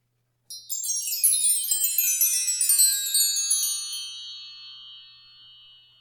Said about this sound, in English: Okay, so we'll be back with a story after the wind chime.